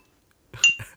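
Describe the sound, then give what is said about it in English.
A beer glass clinks in a quick cheers toast, a bright ringing chime over a couple of dull knocks within a second, with no voices. “I would do the cheers thing, but obviously, you know, it's all social distancing, so let's do it virtually, okay? So, cheers.”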